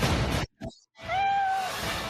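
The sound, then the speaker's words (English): A Persian cat lets out a single long, drawn-out meow, fairly loud, following a brief burst of rustling noise, with steady background hiss throughout. “He's a pro wrestler, and his side hustle is breeding Persian show cats.”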